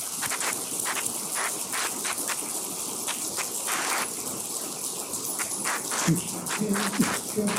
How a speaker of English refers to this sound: So ladies and gentlemen, I would just ask you to join me in a big round of applause for this panel of people.